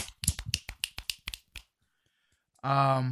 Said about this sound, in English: I feel like we need clapping hands. Yes, yes. No, no, we need some finger snaps.